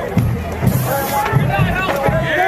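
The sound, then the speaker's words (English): At a protest, a crowd of several dozen charges a single man standing in front of a snack van, macing him and beating him with batons, in a loud, chaotic scuffle, many voices shouting and yelling over one another, with a few sharp bursts of noise cutting through the steady din. “In this video, you can hear a crowd of several dozen charge a single man standing in front of the van.”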